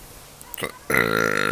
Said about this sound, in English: Oh my god. I know you're not shocked at my burping, but the people walking around in the park get shocked when I burp.